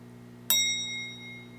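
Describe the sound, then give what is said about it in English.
A single sharp timer bell strike rings out at once, its bright metallic tones holding and slowly fading over a steady low hum. “The timer.”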